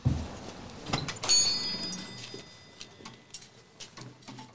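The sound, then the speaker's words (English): A door opens with a low thud and a bright, ringing rattle as someone walks into the Sinisa brothers' shop, followed by a few soft knocks and shuffling as they step inside. Nobody speaks. “This is right when he walks in the door.”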